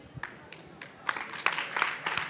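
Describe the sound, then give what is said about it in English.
An audience claps, starting with a few scattered claps and building into denser, louder applause over a couple of seconds. No one speaks. “Do you guys like my answers? Or are you just clapping?”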